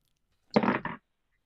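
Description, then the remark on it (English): Dice rolled to pick a character for a writing prompt, in one short, rattling burst of about half a second, with a brief break partway through, heard on their own without any talking. “So go ahead and roll the dice and let's see what we got.”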